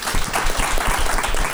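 An audience applauds after an audience member's question about cooking oils: many hands clapping at once in a dense, even wash of sound that stays fairly loud throughout the short burst.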